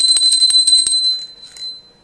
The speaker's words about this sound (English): And I'm going to ring the bell again.